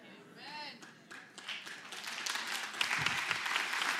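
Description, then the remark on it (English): An audience breaks into applause that swells from scattered claps into steady, dense clapping, with a brief rising vocal whoop near the start and indistinct voices mixed in. “And for some reason, that never gets as much applause.”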